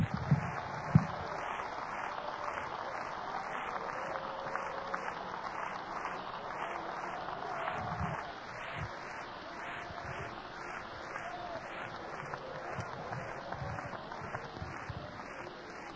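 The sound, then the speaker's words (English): An audience claps its hands in a steady, rhythmic beat that carries on without pause, a dense wash of many hands keeping time together, with occasional low thumps underneath. “Clap your hands again.”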